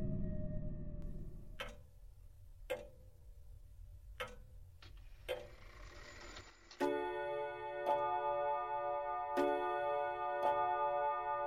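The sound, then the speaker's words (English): A mantel clock showing 11 o'clock ticks in slow, steady beats, each tick a crisp click about a second apart, with a sustained bell-like hum joining in partway through. No one speaks. “I glanced at the clock on the mantle, and it showed 11.”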